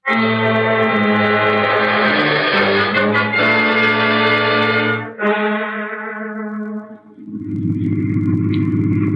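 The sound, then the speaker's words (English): A car engine runs loud, droning steadily as the car is driven, its pitch dropping at two points as if shifting gears, with no voices. “I'll call Kramer, and then I'll get the car out.”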